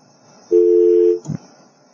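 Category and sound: signal or alarm, phone line tone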